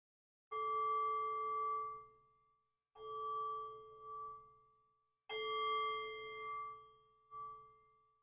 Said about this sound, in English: So in a few moments' time, I'll ring the bell and I'll guide us in.